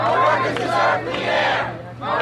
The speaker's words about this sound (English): A recent public hearing on the smoking ban drew a large, passionate crowd to New York's City Hall.